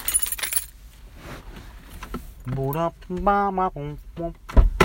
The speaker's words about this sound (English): I'm trying to find the keys. That's what the jingling is, or the whatever rustling, because it's hot in here.